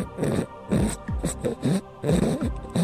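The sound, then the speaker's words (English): A series of harsh, raspy throat-clearing sounds, several rough bursts in quick succession with short pauses between, fairly loud with no speech. “I was just clearing my throat, Harland.”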